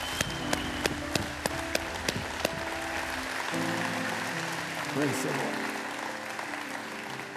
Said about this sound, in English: Would you give the Lord one more clap of praise?